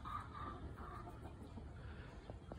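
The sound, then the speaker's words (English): A flock of chickens clucks softly, a steady, overlapping murmur of low calls with a few sharper clucks near the end. No one speaks. “I have an army of chickens at my disposal.”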